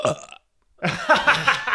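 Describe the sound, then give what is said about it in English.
A person burps loudly: a short guttural burp, a brief silence, then a longer, drawn-out croaking belch that rumbles on for about a second. “Can you burp?”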